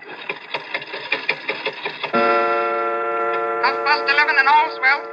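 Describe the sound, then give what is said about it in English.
A mechanical clock, made in London in 1752, clicks rapidly and evenly for about two seconds, distinct, as its glass face is opened and its hand pushed forward, then a sustained ringing tone takes over and wavers toward the end. “But look at the clock. I open the glass face like this. I push the hand forward like this”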